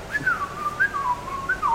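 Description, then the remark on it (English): A person whistles the Nokia ringtone melody, a quick run of clear, bright notes rising and falling in a short phrase, with no talking. “I almost whistled Dixie, but it was going to come out the Nokia theme”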